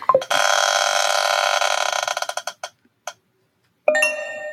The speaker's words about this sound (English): Let's spin the wheel.